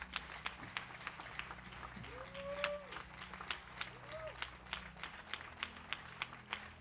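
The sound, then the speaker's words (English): A church audience claps a "clap offering" for God the Father, steadily and rhythmically, sharp regular beats ringing out together, with a couple of rising whistle-like tones and murmuring voices underneath. “Clap offering for God the Father first.”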